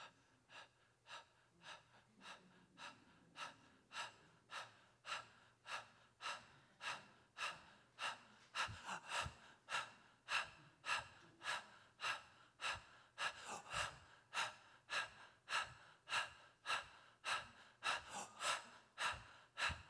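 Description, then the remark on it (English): Heavy, rhythmic breathing repeats steadily, with quick breaths following one another for the whole stretch and growing louder about halfway through. No one speaks. “I can hear it breathing.”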